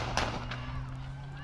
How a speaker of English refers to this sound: That's the police trying to shoot the car that it just broke through the barriers that were set up for the parade